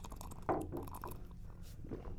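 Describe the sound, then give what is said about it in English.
A wet slurp of a drink, with a sharper sucking burst near the start followed by softer gurgling mouth sounds. Quiet overall, with no one talking. “That was a good slurp.”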